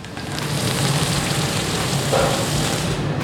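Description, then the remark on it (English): A hot metal glassworking rod, used to shape molten glass, hisses and sizzles steadily as it is cooled in water, a dense crackling spray of noise that holds for about three seconds with no voices. “So if you hear a sizzle on the metal, then you know that area is hot.”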